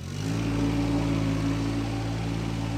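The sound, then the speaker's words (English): A John Deere ride-on mower, used to keep the ballfields on University Parks Drive east of LaSalle, turns over and catches, then settles into a steady, loud low-pitched drone with a buzzing harmonic hum and no voices. “The firing up of a John Deere mower is an everyday occurrence.”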